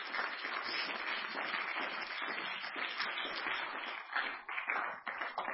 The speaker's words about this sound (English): In Jesus' name, let's clap our hands before the Lord.